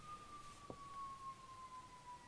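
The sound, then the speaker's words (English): A siren wails faintly as one long, steady tone that slowly drifts lower in pitch. There is a brief click partway through, and no one is talking. “Sirens aside, I thought I would highlight a couple more interesting aspects of this particular collection.”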